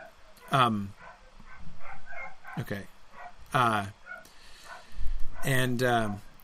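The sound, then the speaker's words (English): Dogs bark in a few sharp, high-pitched bursts, about four separate yappy barks spaced irregularly, moderately loud against a low background murmur of voices. “Trish, I'm hearing your dogs in the background, and I keep thinking it's my dog upstairs barking.”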